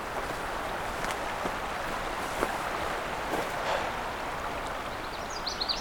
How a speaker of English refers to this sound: Hearing something distant calling, something loud. The sound of the river is kind of drowning it out a bit.